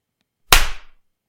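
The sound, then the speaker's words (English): A single sharp, loud hand clap bursts out of silence, its crisp smack trailing off quickly, as if several hands struck together at once. “So before you stop, we got to clap again.”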